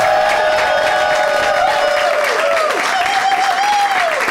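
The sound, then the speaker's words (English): The audience of the show Doug Loves Movies applauds steadily and loudly throughout, a dense wash of clapping with voices cheering and whooping above it, including a sustained wavering high holler near the end. “My name, still clapping, I love it.”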